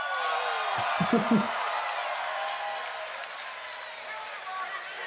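A dense, roaring wrestling crowd screams and cheers throughout, with a brief deep booming strike near the start, the Undertaker's entrance gong, sounding under the noise.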